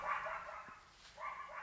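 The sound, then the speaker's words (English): A dog gives two drawn-out, high-pitched barks or yelps separated by a short pause, faint and a little strained, with no one talking over it. “It's a dog.”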